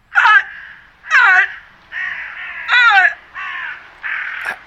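Crows cawing loudly and repeatedly, six harsh calls in a steady rhythm, each about half a second long, heard in the background over a phone call, with no one talking.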